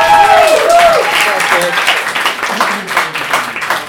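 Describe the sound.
A round of applause from a crowd, steady, dense clapping that stays loud for about four seconds, with a few voices calling out over it at the start.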